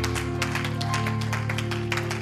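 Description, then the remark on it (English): A church audience claps steadily in praise of the Lord before being seated, a dense, continuous patter of many hands at an even loudness, layered over a sustained low musical hum. “Give the Lord another hand clap and shout of praise before you're seated.”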